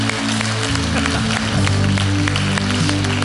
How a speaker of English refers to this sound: Give the Lord a great big hand clap. Can you do that, everybody?